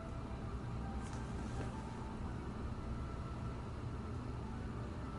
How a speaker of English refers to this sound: Sorry. I don't know if you can hear that. No. You can't hear it? No. Well, my central air also kicked on, so I'm getting a low drone noise.